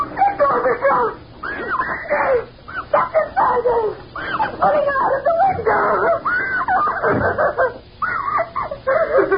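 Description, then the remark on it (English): A woman screams and wails almost without pause, long rising and falling high-pitched cries, loud, with brief breaths between them. “Who are that screaming?”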